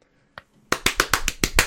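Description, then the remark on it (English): Loud, sharp hand claps, clapped hard enough to hurt the clapper's hands, in a rapid, steady burst of about seven, preceded by a single quieter clap, with no voices. “I hurt my hands with how hard I clapped.”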